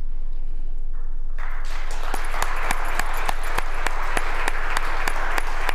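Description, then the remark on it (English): Applause from both sides of the aisle breaks out in the state Senate chamber in Lansing after a speech, rising quickly into dense, steady clapping from many hands, with sharp louder claps standing out at a regular beat. No one speaks over it. “Now, that applause you hear there is coming from both sides of the aisle in the state Senate chamber, something you almost never experience in Lansing.”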